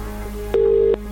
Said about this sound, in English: you'll have to answer your phone within 5 rings. 1 ring. 2 rings.